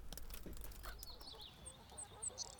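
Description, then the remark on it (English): Chickens being fed cluck and chirp softly outdoors, a scatter of short, bright calls over low background rumble, with a few sharper peeps near the end. No one speaks. “After a while, Lucy was out feeding their chickens when her dad came stumbling over with Bobo by his side.”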